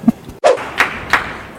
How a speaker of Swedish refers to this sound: Någon som klappar så in i helvete högt här. Det var någon slags coach.